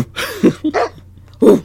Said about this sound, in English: It's so funny. It, like, it doesn't get old every single time. It's just so funny. And the fact it's a real bark. Bark, bark.